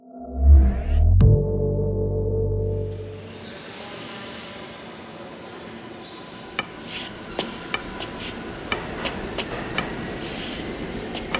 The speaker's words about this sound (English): Stop the train!